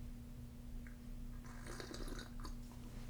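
A quick, wet slurping sip of cognac, a hissy burst of liquid drawn in over about a second, above a steady low hum with no talking.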